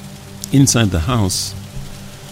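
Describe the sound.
Steady rain hisses throughout, heard from inside a house, a soft constant wash, while a voice briefly speaks over it in the middle.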